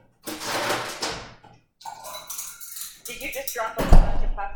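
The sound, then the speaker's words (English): Loud clattering of pots, pans and other kitchenware as someone gets a drink of water, a jumble of metallic clanks and rattles in several bursts, ending with a heavy thunk. “Did you just drop a bunch of pots and pans?”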